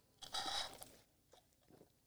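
A quick sip from a can of White Claw hard seltzer, a brief airy slurp lasting under a second, followed by a couple of faint swallowing or handling sounds in otherwise quiet surroundings.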